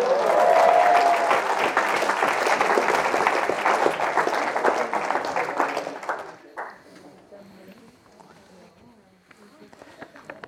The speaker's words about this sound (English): Round of applause.